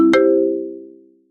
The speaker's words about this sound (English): Step 2, let the phone continue to ring until your friend either hangs up or the call is diverted to voicemail.